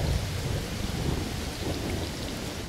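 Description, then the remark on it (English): A monsoon thunderstorm in Nogales with heavy, steady rain pouring down and deep thunder rumbling low underneath, loud and continuous throughout, with no voices. “Heavy monsoon rains sent Lee Jacobs, the utility director for the city of Nogales, to inspect the pipeline looking for damage.”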